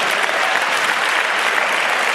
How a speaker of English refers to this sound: I've already had you too long, I pray. Give God a hand clap that.